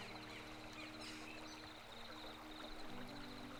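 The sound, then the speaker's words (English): A steady, quiet wash of flowing stream water runs continuously without a break, with a faint constant hum and a few soft high cricket chirps in the background. “As the water keeps going, I now see something out the corner of my eye moving.”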